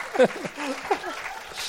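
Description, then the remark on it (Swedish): A short burst of applause after a joke, with voices whooping and calling out over it, the clapping a steady noisy wash lasting under two seconds. “En applåd.”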